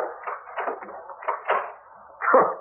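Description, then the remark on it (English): A series of muffled knocks and scrapes builds to a firm thud as a door is pushed shut, followed by a click of a lock, all somewhat dull. “Ah, what good is locking that door going to do?”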